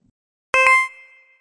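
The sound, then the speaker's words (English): A voicemail beep on the answering message of Cyber Retail Iron: a bright, ringing tone with two quick attacks in succession, then a sustained mid-high pitch that fades out over about a second, alone with no talking. “When you heard a beep, please leave a message so we can contact you at another time.”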